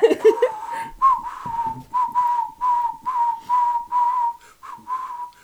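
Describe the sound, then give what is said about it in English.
A person whistles a short melody of a song back from memory, a run of clear sustained notes in a steady rhythm with brief gaps between phrases, moderately loud, with a faint murmur at the very start. “Do you want to whistle it back to me, …?”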